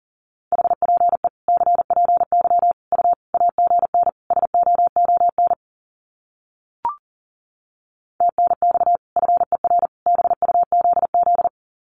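Rapid Morse code at 40 words per minute sending common QSO phrases: a steady mid-pitched tone keyed in quick dots and dashes, sent in two long runs separated by a pause broken only by a short click.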